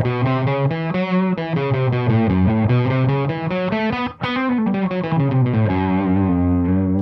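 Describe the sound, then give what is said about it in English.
A buzzy, distorted melodic line plays continuously, its notes bent and sliding between neighboring pitches in a bluesy way, with one brief dropout partway through. “they would often distort some of the notes or bend some of the notes around or sort of sing semitones or tones that were in between the notes.”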